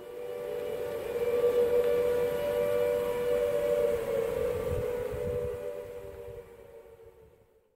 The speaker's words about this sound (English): And it's the juxtaposition of dreary, wet, ordinary Britain and the siren hovering over it all.